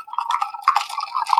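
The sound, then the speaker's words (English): Ice cubes clink and rattle against a glass in a quick, continuous jumble of bright, high-pitched taps lasting about a second and a half, with no voices. “Here's your clinking ice.”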